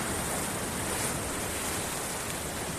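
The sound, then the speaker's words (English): A steady, full wash of ocean surf rushes continuously with no distinct breaks, a dense hiss of waves with no voices. “Beautiful ocean scenery.”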